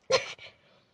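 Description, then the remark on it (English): A single sharp, loud human sneeze from a person who is talking, bursting out abruptly and trailing off into a brief, softer exhale. “Sorry. Bless me.”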